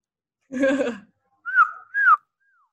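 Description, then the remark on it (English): A woman who is a vocalist imitates a bird call with her voice: a short breathy burst, then two fluttering, whistle-like notes that slide downward in pitch, and a faint trailing chirp at the end. “I can make bird noise.”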